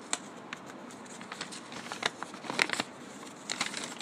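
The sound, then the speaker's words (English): Crisp crackling and rustling of a paper envelope being unfolded, with irregular sharp crinkles and snaps scattered over a soft papery hiss, growing busier toward the end; no voices. “Notice that crackle.”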